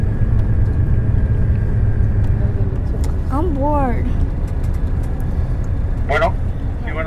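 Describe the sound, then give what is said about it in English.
A steady, loud low rumble of a bus engine fills the whole recording from inside the moving vehicle, with a couple of brief spoken words rising over it. “The thing about traveling on these bus lines, every time we pull into a station, we wonder, what will the next bus be like?”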